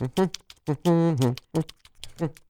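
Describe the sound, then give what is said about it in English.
A voice mimics tap dancing shuffle steps, a shuffle ball change, with quick, crisp mouth clicks and short voiced syllables, including one drawn-out sung note in the middle, fairly loud. The man makes the tap sounds with his mouth without moving his feet. “Well, he's doing this amazing tap. It looks like a shuffleball check.”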